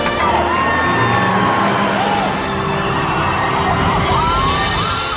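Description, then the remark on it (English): A giant tour bus's engine rumbles loudly and steadily as it moves away, with a hiss of air brakes and busy street noise around it, and no one speaking. “And when they return, a giant tour bus is hiding the spiffed-up house. And then they go, move the bus! Move the bus!”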